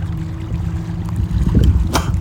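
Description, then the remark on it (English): Steady flowing water beside a rock rushes and burbles, a continuous low wash that swells slightly toward the end, with a brief splashy burst near the close. “I'm speaking on a rock that I didn't plan to be on, speaking next to water I didn't plan to see today, and that's just the way the wind blew.”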